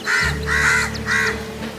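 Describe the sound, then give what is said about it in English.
A crow caws three times in quick succession, harsh and raspy, loud, with a faint steady hum underneath and no voices. “But you are a crow too. How can you call crows ugly?”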